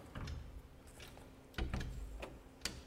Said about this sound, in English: Hear that click? Close every door completely.